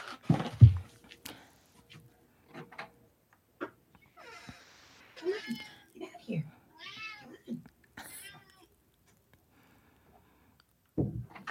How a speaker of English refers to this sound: We totally got your cat meowing.